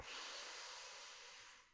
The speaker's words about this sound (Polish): Weź głęboki wdech przez nos. Wydech przez usta. Jeszcze raz wdech przez nos.